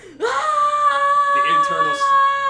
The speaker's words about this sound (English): Just, oh yeah, I also forgot the scream.